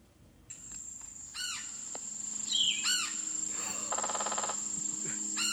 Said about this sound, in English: Oh my god. Okay, so it's some kind of woodpecker. It's, let me guess. Is it ladder-backed? Ooh. No? It's close. It's a woodpecker, yes. Red-headed woodpecker. Red-headed. Oh, I should have known.